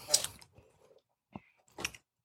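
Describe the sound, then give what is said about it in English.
Quiet mouth sounds of someone sipping a drink: a soft slurp, a few small wet clicks and a gulp, then a second brief sip, with no talking. “You know, what's aggravating me is you taking a sip of your drink like you right and you validate it.”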